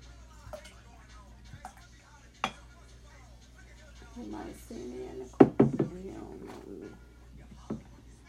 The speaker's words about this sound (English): And then I need to move this water because I'm not gonna drink it. Let's go ahead and refill this glass.